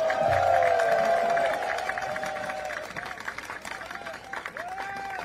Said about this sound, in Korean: 뜨거운 박수 부탁드립니다.